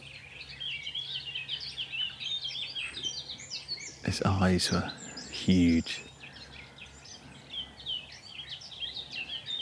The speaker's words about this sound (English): And I rather think it was the same sort of sense as when I first heard a nightingale. It's a shame this one didn't read the script and continue singing as I was talking.